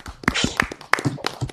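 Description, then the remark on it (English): A handful of sharp hand claps ring out at a steady, unhurried pace, fairly loud, like a small group applauding a guest joining a show by phone, with a faint murmur of voices underneath. “Round of applause”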